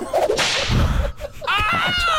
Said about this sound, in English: Oh! Edit some whip cracks in there. Stay on track. You bet I'm going to edit some whip cracks.